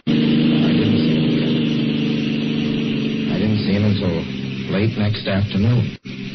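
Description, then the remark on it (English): A car engine hums with a steady, low drone as it drives, continuous throughout, and partway through a man's voice begins speaking over the running motor. “I stopped a car at a sleepy little junction just across the border into Oklahoma to let a train pass by.”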